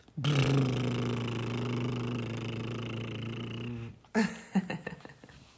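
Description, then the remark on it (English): A person imitates a goldfish blowing bubbles in its bowl with a long, steady, buzzing exhale of about four seconds, fairly loud, followed after a brief pause by a few short, sputtering breathy puffs. “Then I let out all my air to make bubbles in my bowl.”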